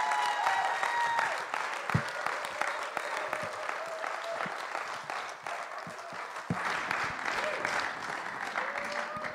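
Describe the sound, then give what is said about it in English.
Sustained applause from an audience fills the whole stretch, a dense steady patter of many hands clapping with scattered cheers and whoops rising above it, holding a fairly even loudness throughout. “let's give her some encouragement, cheer her on.”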